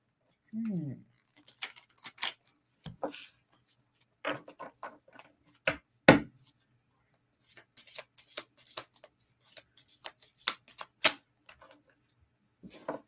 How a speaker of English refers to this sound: I'm going to shuffle the cards.